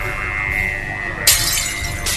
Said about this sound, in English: Good lord. It's starting to break the glass of my window.